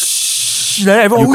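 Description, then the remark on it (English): A steady, bright hiss of a dish sizzling on a hot plate, as served at the place Murni, fills the first half, then a voice begins talking over the fading sizzle. “This dish, right? It's on like a hot plate one. Yeah, yeah. Every time they come out, it's a commotion, like Second World War one.”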